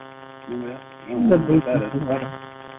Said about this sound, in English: Okay, I couldn't hear. We're getting a little static there.